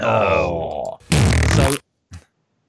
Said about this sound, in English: I'm going to step in with my shed being the only place I'm allowed to go because I am farting like a demon.